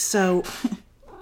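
A single short cat meow, bright and tonal, then a burst of soft rustling noise and a couple of faint muffled thumps.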